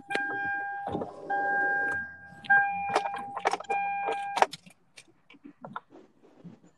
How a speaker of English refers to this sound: Someone in a car?